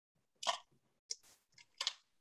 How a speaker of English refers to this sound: I'm going to take a sip of water.